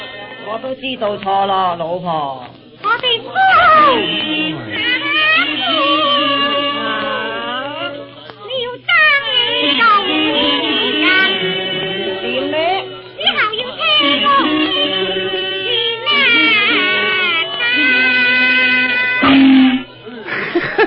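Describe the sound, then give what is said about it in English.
Tinny, muffled Chinese orchestra music plays from an old record at 9 o'clock in the morning, with shrill sliding melodies and wavering high tones over a steady low hum, loud and continuous throughout. “That music comes from a record.”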